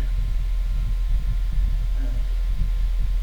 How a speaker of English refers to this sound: Sorry, guys, those humming sounds are our fans because it's fucking humid and a billion degrees in here.